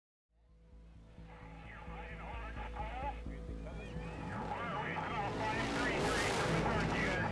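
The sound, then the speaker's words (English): Off-road racing motorbikes in the Baja 1000 race in Mexico, heard in a played video: engines whine and rev, their roar building steadily louder into a dense blast, with indistinct voices mixed in underneath. “Go some Baja 1000 motorbikes.”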